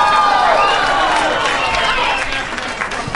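An audience applauds and cheers a contestant's answer, the movie Christmas with the Cranks, given with help from an audience member; dense clapping mixed with whoops and shouts that stay steady before easing slightly toward the end.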